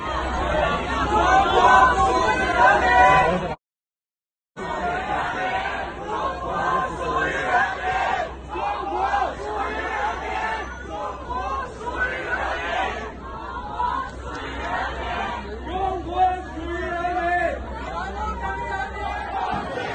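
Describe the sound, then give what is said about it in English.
A large protest crowd in China's far western Xinjiang region chants and shouts for the COVID lockdown to be lifted, loud and dense with many overlapping voices, continuing steadily except for a brief drop to silence near the start. “Lift COVID lockdown is what this crowd in China's far western Xinjiang region is chanting after a deadly fire in a high-rise building triggered rare protests over the country's prolonged COVID lockdown.”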